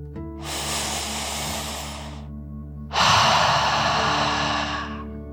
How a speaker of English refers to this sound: Before we begin our story, let's relax by taking a nice deep dragon breath. Breathe in through your nose, filling up your lungs, and then out through your mouth, imagining you are breathing fire, like a dragon. Ready? Deep breath, in and out.